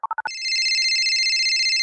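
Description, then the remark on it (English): Four quick electronic beeps lead into a loud, sustained, warbling phone ring with bright layered tones, clear with no voices. “You guys, it's time to phone a friend.”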